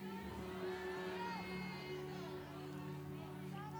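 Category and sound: crowd, audience shouting in response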